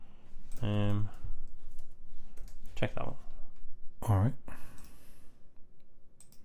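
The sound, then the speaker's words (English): Crisp computer mouse clicks and light keyboard taps scattered through the background while a man speaks a few short phrases, with quiet stretches between bursts. “There's a lot of clicking around here today on the old podcast.”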